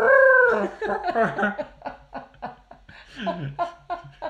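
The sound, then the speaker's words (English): A person vocally imitates an owl's call, opening with a loud, drawn-out hooting cry followed by a string of shorter, wavering calls that edge into laughter, clear. “What sort of call does an owl make”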